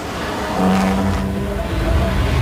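A low, continuous rumbling drone of racing cars running over the kerbs as the race gets under way, with a steady engine-like hum swelling slightly partway through. Moderately loud, with no clear speech over it.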